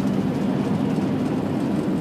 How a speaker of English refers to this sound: I just got overtaken by a fucking truck.